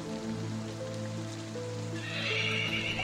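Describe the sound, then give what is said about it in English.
Steady rain hisses throughout, swelling brighter and heavier toward the end, while a horse whinnies in long, drawn-out neighs over the downpour. No one speaks. “So you guys head out in the rain.”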